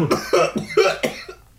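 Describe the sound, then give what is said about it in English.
A person acts out a fit of coughing: four or five harsh coughs in a quick, uneven series, trailing off into quiet at the end. “You hear coughing.”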